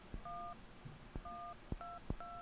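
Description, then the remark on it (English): A sequence of four phone keypad touch tones beeps out in an uneven rhythm, each steady dual-pitch tone preceded by a soft tap, forming a simple little tune with no talking. “Why are we playing things from our phones?”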